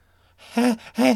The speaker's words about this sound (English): The fat man gasped in terror. He was at the mercy of the Red Panda.